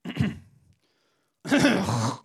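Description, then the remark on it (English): A man clears his throat: a short rough rasp, a brief pause, then a louder, longer gravelly hack. No talking. “And then he hears the man clear his throat.”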